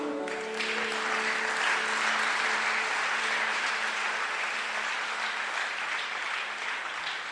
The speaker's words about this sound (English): Take your seat. God bless you. Or you can give Jesus a clap.